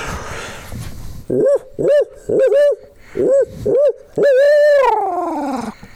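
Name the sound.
imitated owl hoot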